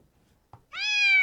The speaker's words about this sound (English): So that we don't say that we're so often we have initiated the the young cat sound.